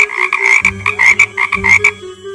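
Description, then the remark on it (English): A woman trying to sing croaks like a frog instead: loud croaking in a quick rhythmic series of raspy pulses, two bursts of several croaks each with a brief pause between, and no other voices. “in all her excitement, tries to sing and ends up croaking.”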